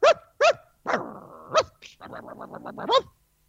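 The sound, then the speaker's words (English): A person mimics a dog, giving a few sharp barks, a drawn-out whiny yelp, then a quick stuttering run of yaps ending in one last bark. “I like to identify as my dog Asher.”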